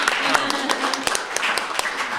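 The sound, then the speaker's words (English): A small audience applauds steadily for a couple of seconds for an audience member coming up to a microphone to ask a question, with scattered sharp claps at moderate volume and murmuring voices mixed in underneath. “Round of applause for the person who is.”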